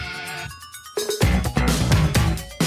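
A person's own musical phone ringtone plays fairly loud, opening with steady electronic tones and a short choppy stutter, then bursting into a fuller, busier jingle.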